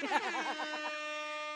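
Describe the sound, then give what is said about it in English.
A short, loud air horn blast, wobbling briefly at the start before settling into a steady, brassy tone that holds for over a second, heard on its own. “So, like, where's our air horn?”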